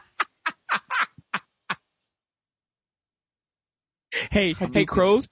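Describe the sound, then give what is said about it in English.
A voice imitates a crow with six short, harsh caws in quick succession, fairly loud; after a brief silence, someone starts talking. “Is, you're never going to get that, a crow.”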